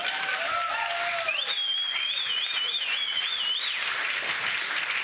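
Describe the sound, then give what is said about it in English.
An audience claps steadily for about five seconds, a dense, sustained wash of applause, with high whistling tones rising and wavering above it. “I don't know what they're clapping about.”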